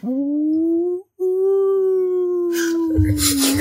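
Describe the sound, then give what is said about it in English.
A voice imitates an alarm with a long, loud, steady wailing tone that rises slightly in pitch, breaks off briefly, then resumes and fades with some breathy noise at the end. “Tell me how these alarms sound.”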